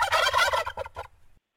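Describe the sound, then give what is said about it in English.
A recorded turkey gobble sound effect, played for Thanksgiving Day: a rapid, warbling burst of throaty notes that rises loud at first, then breaks into a few shorter clucks before trailing off into silence. “I did the whistle, but traditionally I do the gobble because I do have the gobble lined up as a sound effect somewhere along here.”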